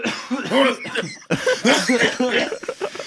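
A harsh coughing fit after inhaling smoke, with strained, wheezy breaths between hacks, briefly pausing partway through before the rough coughs resume and trail off.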